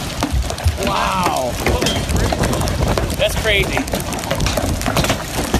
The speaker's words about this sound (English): It's hailing out now, boy. Look at the size of those things. This is crazy. Look at the size of those splashes. Woo!